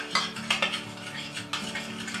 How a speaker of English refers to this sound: Then alternate with the flour and the water until you've used everything up. A little flour, a little water. I find that sometimes it's easier to take a spoon and mix together than a fork.